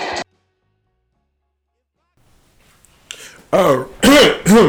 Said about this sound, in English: Couldn't clear my, let me clear my throat.